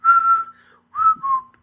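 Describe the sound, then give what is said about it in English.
Someone whistles a short, clear melodic phrase, a sustained note followed by a pause and two gliding notes, with no talking. “And then he goes, and then he whistles when Vernon comes walking in. I can't whistle.”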